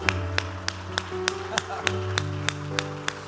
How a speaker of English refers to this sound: Clap your hands and praise Him all over the field.